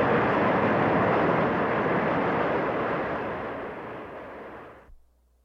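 A subway train roars through a station with a loud, steady rushing rumble that gradually eases before cutting off abruptly. No voices.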